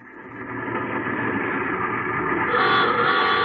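A car engine rumbles steadily, its hum holding and swelling slightly louder near the end as an old car pulls up behind a person walking along a road in rolling hill country and stops, with no voices present.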